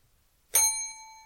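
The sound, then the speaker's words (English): A single bright bell ding strikes sharply and rings out with a clear, sustained metallic tone that slowly fades, heard alone against near silence. “That was a 1.5 bell, just so you know, because I don't think yours was like a terrible idea.”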